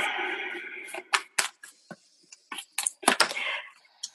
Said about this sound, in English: Perfect. Now, I'm still shuffling and getting some cards here